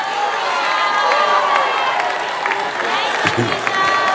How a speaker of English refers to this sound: Is it the ladies who are shouting or the men who are shouting?